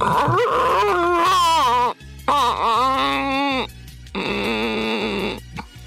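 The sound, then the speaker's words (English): A person's voice imitates whale mating calls with three long, sweeping, wavering moans, each rising and bending in pitch, loud, with brief pauses between them. “Or I can make the whale sounds if you like. Just like, let me try.”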